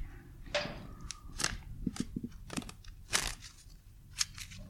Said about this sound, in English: You can shuffle them like cards, can you? You can shuffle them however you want.